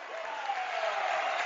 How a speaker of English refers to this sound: And the senior getting a loud cheer here from the Rowdies and the rest of the fans as Joaquin Robinson getting the bucket.